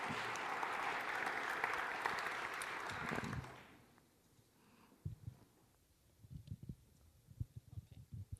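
An audience claps for a summer intern about to speak, in a dense, even burst of applause for about three seconds, then it fades out, leaving near quiet broken by a few soft, low thumps.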